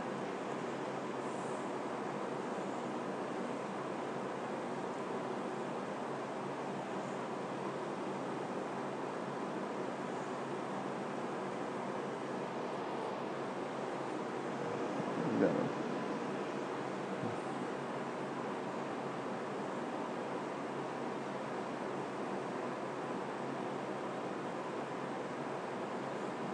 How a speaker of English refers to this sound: Is that like a little air conditioner thing? That's cool.